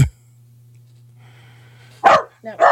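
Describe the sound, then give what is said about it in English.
After a stretch of quiet background hum, dogs wrestling let out two sharp barks in quick succession near the end, with no talking. “Sorry, I got distracted by dogs wrestling.”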